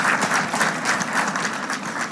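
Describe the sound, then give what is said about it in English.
A crowd at a school board meeting applauding after the board voted for a teacher's early retirement, steady dense clapping with a few cheers mixed in, loud, continuing without a break for a couple of seconds. “Cheers and applause. That was the reaction when the Bogo School Board voted in favor of Mike Hosinski's early retirement.”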